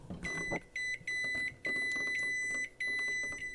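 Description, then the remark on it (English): A microwave oven's timer dial is touched with a finger and spins, producing rapid clicking bursts with a steady high electronic beep chirping again and again over a few seconds, fairly loud, as the timer is set to about 5 minutes. “So whenever you like walk past it, if you look at it, it spins and suddenly it's on for minutes and seconds.”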